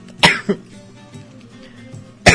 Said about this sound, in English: Sometimes the rum doesn't go down as easy as others. That was not the birthday song. That was me coughing.